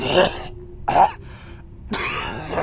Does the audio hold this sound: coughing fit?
yes